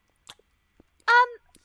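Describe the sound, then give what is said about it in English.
A voice mimics a goat chewing: a few soft, scattered mouth clicks, then a short, loud, nasal bleat-like sound, with no other talking. “you take a look at this thing, and you're pretty sure that this is just a goat with a horn glued to its forehead. And it's just chewing in there.”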